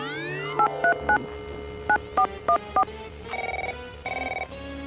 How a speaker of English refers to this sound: Oh, I got the phone. Okay, now, call Amelia Earhart.